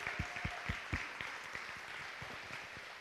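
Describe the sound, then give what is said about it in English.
A crowd claps steadily, with a few sharp, distinct hand claps standing out near the start over a dense, continuous wash of applause that stays at moderate volume throughout. “But I wanted to say thank you, give this gift to you, applaud you.”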